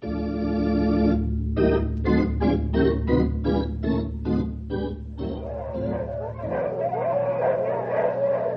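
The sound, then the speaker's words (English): A team of husky sled dogs barks and yips in a lively burst as they are urged on to pull: a drawn-out cry opens, then a quick run of about eight sharp barks, fading into a continuing mix of excited dog noise over a low background rumble. “You huskies! Mush! Come on, you lumpers! You ain't had a good workout for a week!”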